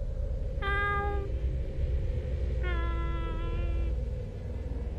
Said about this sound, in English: Back inside the shack, the meowing outside returned.